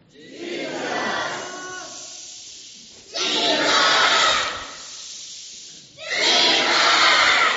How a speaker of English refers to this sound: Okay, the shouts are always going to be louder, aren't they? That was very impressive. Very impressive shouting.